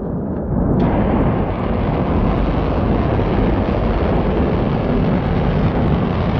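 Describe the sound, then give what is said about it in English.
A submarine-launched ballistic missile, after being pushed through the water by pressure and steam, ignites its engines with a sudden burst on reaching the air, then a loud, sustained rocket roar, dense and rumbling, fills the whole clip without letting up. No voices. “The difference is they first use pressure and steam to travel through the water from the submarine, and once they reach the air, their engines ignite and blast off.”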